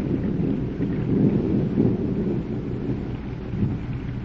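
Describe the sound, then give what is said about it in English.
A low, sustained rumble of thunder rolls over a steady wash of rain, heavy and continuous with slight swells in loudness, with no voices present. “Oh, now, good Lord, please send us a flash of lightning.”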